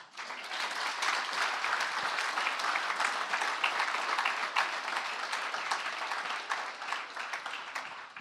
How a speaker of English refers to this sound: We can give God an applause.